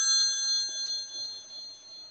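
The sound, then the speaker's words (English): A telephone rings with a steady, high electronic tone that holds continuously for about two seconds, moderately loud and heard on its own with no talking. “Is that really your phone? No, that's someone trying to call the podcast.”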